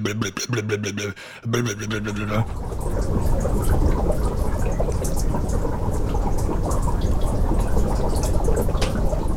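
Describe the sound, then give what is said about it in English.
Meltwater gurgles and resonates through cracks in melting ice, flowing through shapes formed by the ice, opening with a throbbing, engine-like tone that stutters briefly before giving way to a steady, rushing roar of water. “Because it's basically water resonating through these weird shapes that have been formed by the ice.”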